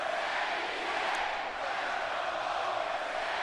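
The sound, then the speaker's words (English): A large, split arena crowd roars and chants in a steady, dense wash of voices that holds at an even loudness throughout, with no single voice standing out. “This is a split crowd”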